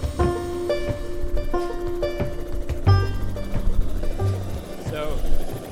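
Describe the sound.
A helicopter loaded with 5-gallon buckets of fish, about 70 pounds, gives a steady low rumble and whine as it powers up to take off, with people's voices talking over the engine noise.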